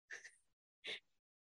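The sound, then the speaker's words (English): A quiet sneeze in two quick breathy bursts, a short hissing intake followed by a sharper, brighter burst, with no talking around it. “There's a sneeze from up there.”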